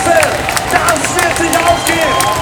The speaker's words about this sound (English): Just over a quarter mile left, I can see it on the big screen. Everyone's going crazy. Everyone's got their phones out. Everyone's cheering.